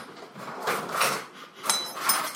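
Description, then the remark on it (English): A drawer slides open with a rough scrape, followed by a second burst of metal forks jangling and rattling. No one speaks. “Grab a fork. There's forks in the drawer.”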